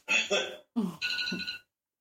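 A small bell, rung to signal a drink, rings twice in quick succession, each ring a bright, high metallic jingle that sustains briefly before the second ring stops abruptly.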